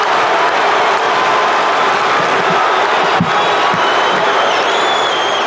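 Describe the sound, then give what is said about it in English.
A roaring basketball arena crowd cheers loudly and steadily after Michael Cooper of the Lakers hits an 18-footer, a dense wall of voices and shouts that barely rises or falls across several seconds, with a few sharp thumps breaking through. “But listen to this crowd on Cooper's heroics.”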